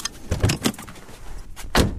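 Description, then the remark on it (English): Clicks and rattles of a car door being opened as people get out of the car, parked on a slipway by the seaside, a couple of quick clunks followed by a louder thump near the end, with no one speaking. “Let's get out of the car.”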